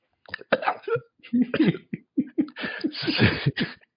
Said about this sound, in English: She could hear the sounds of smacking lips. Gulping and choking.